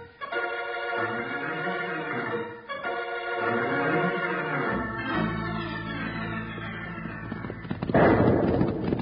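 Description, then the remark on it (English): Dramatic orchestral music swells and slides downward, then a sudden loud crack of thunderstorm thunder bursts in near the end and rumbles on under the fading music, as Wild Bill and Jingles run from the storm. “But on one occasion, an adventure started for Wild Bill and Jingles, with them running away from a thunderstorm and into a clash with the Queen of the Quantrills.”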